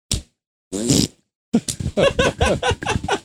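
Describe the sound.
A secret handshake: a quick clap smack is followed by a loud, buzzy raspberry blown through the lips as the hands go up, lasting under half a second, then a few seconds of lively, choppy vocal sounds.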